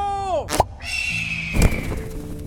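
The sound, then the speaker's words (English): A loud, sharp eagle screech sweeps downward in pitch, followed by a rushing whoosh, a thin sustained whistle, and another burst of noise. “And now, to escape, Odin as eagle, go!”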